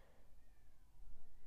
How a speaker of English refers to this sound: We're dog sitting a cat right now, and I just heard it scream all the way from the basement, and she's like fine. She's just really dramatic and she yells at us, but anyway, I just like heard her anyway.